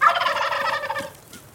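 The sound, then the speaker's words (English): A wild turkey tom gobbles once, a loud, rapid warbling rattle lasting about a second, alone, then trailing off into quiet. “And of course, there's the gobble itself.”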